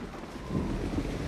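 A steady hiss of heavy rain with a low, rolling rumble of thunder swelling underneath, a brief stormy wash with no voices.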